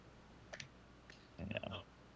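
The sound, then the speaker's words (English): A few quick taps, then a denser burst of clicky tapping, like a man typing briefly on his keyboard. Fairly quiet, with no talking. “So the guy just taps on his keyboard.”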